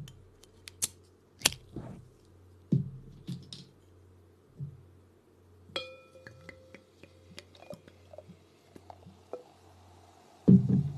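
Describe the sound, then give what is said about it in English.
A carbonated drink is cracked open with a few sharp clicks, followed by a bright ringing clink of glass and soft, scattered fizzing as it's poured into a wine glass, with no one talking. “So we're going to crack it open and we're going to try.”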